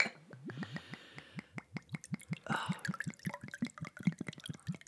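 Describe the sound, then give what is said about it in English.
Field Notes vodka from La Crosse Distilling Company glugs from a bottle over oversized ice cubes in a quick, steady run of hollow gurgles that rise in pitch as the glass fills, with a brief splashy rush midway and no talking. “Cascading over those oversized ice cubes.”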